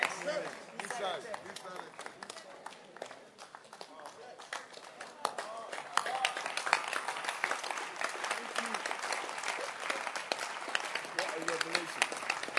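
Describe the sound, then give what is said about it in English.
An audience claps steadily throughout, a dense crackle of many hands that swells noticeably louder halfway through and keeps going, with some crowd voices mixed underneath. “If ever somebody will clap, ask yourself, when was the last time somebody clapped his hands for you?”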